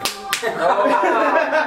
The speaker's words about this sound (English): Oh, that was a backhand slapping sound.